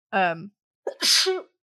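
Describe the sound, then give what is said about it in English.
A single loud sneeze: a short voiced gasp, a brief pause, then a sharp, hissing burst that trails off quickly. No one talks. “Bless you.”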